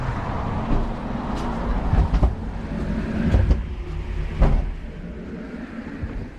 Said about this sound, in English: That's what we call a revolving door.